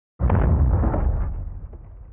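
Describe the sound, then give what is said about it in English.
A sudden, heavy wartime explosion in Yemen bursts in and rolls on as a deep, sustained roar, loud and low, making windows shudder, slowly fading with rumbling aftershocks over a couple of seconds. “As I write, the roar of explosions swells. Our windows shudder.”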